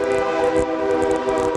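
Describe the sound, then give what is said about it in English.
A nearby train rumbles past on the railroad track by a ballpark during a summer baseball game, with a sustained, droning horn blast, steady harmonic tones riding over low rolling rail noise, loud and continuous for the whole moment with no voices. “What would the summer be without a bunch of traffic on the old train track?”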